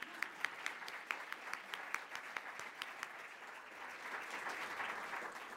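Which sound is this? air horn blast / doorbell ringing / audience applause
audience applause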